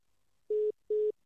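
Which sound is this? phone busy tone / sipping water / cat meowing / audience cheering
phone busy tone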